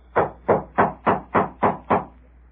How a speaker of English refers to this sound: Footsteps. Must be her.